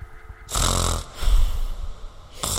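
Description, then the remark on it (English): A voice imitates deep sleeping snores: two long, rumbling, throaty snore sounds about half a second apart, followed by the start of a third, loud with no other talking. “Like deep snore, like deep sleeping snore.”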